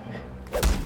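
After a low rumbling lead-in, a huge stone flung from the underbrush lands in a barge with a deep, booming thud and a short burst of splintering crunch, smashing a hole through the bottom and the level beneath, water splashing underneath.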